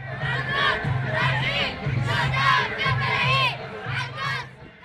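A loud crowd at a protest march shouts and chants in rhythmic, overlapping bursts of many voices, with a low pulsing tone repeating steadily underneath throughout.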